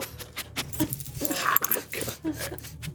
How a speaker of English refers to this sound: we have an intruder here for a second in the form of my dog